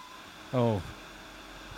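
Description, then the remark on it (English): A distressed dog, left at home while its owners were away at the vet, lets out a short, wavering whine that slides downward in pitch, followed after a pause by a brief, sharp high-pitched yelp. “Oh, that dog's got a rat stuck in its throat.”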